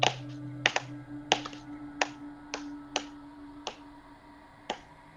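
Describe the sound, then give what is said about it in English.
Sharp, crisp claps ring out one at a time, about nine in all, the gaps between them stretching longer as the rhythm slows toward a stop, over a faint steady low hum. “As you guys reach the top, the clapping slows to a halt.”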